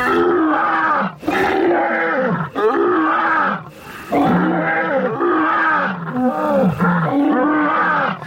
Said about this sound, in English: Lions roar for communication with other lions. And one of the things that my colleagues and I at the University of Minnesota have been studying is exactly what sorts of things they're trying to communicate.